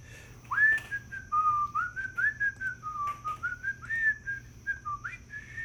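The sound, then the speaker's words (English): A person whistles a show's outro music, a short, wandering melody of sliding, sustained notes over about five seconds, fairly loud and alone, with a faint low hum underneath and no talking. “Take it away with our patented, copywritten, trademark head outro music that we play every single episode.”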